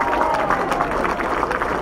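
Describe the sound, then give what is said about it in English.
A crowd at an election-night event in Suffolk County claps steadily for the campaign of candidate Luba Gretchen Shirley, a dense wash of many hands with murmuring and a few cheers mixed in, holding at an even, fairly loud level throughout. “We are waiting, so give her a round of applause for the campaign that she ran.”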